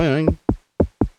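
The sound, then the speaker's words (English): A short vocal sound gives way to a heartbeat effect: two pairs of dull, low thumps in a steady lub-dub rhythm, fairly loud, with brief silences between them. “The only sound effect is have a heartbeat.”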